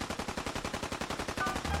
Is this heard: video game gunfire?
yes